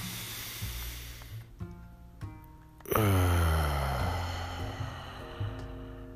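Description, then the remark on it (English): A slow, airy breath drawn in through the nose, then a longer, louder exhale through the mouth with a soft hissing rush, over a gentle backdrop of sustained tonal music. “And just like any other episode, we're going to begin this episode with breathing. In your nose.”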